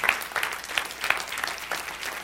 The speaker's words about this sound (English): If you got anything out of this, put your hands together. Give the Lord a hand clap.